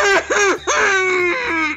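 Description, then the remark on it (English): Loud, strained, muffled wailing and crying from a man gagged beneath gauze and tape after both his feet are shattered with a sledgehammer, with a few sharp sobbing bursts that swoop up and down in pitch before settling into a long, high, quavering wail. “Among the muffled wailing and crying, the woman smiled at her handiwork.”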